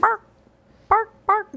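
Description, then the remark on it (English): A person imitates a dog barking: three short, fairly loud voiced barks, the first alone, then a pause before two more in quick succession. “My ears are being tickled by your barks.”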